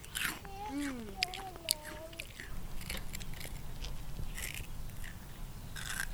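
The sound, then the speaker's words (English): Crisp crunching as someone bites into a donut-like fried dough made with flowers and orange and keeps chewing, with irregular crackly bursts throughout and a brief appreciative hum near the start. “Melt in your mouth crunch.”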